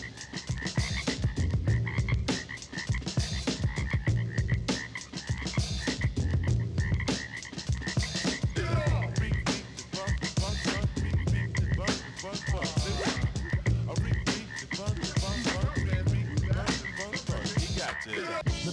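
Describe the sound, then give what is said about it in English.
A dense chorus of frogs croaks steadily, many overlapping rapid calls forming a continuous rhythmic pulse, fairly loud throughout with no voices. “Still hear the frogs dancing in the street.”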